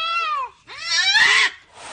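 A cat meows loudly, two drawn-out, wavering calls that slide downward in pitch, followed by a softer, breathier cry at the end. No one speaks.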